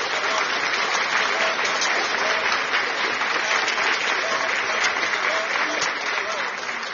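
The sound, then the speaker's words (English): Sustained applause from a large group clapping in praise to the Lord, a dense, steady wash of many hands clapping at once with no pause, loud throughout. “To give a clap of love to the Lord. Clap unto the Lord.”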